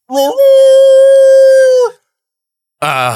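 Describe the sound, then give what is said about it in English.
A single long, steady dog howl heard in the distance rises in, holds a clear sustained tone for nearly two seconds, then drops away; after a short silence another harmonic, howl-like sound begins. “That sound in the distance? I am Dog Man. I'm here to chase the cat.”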